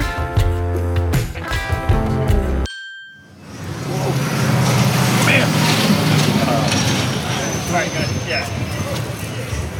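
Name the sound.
tour bus engine running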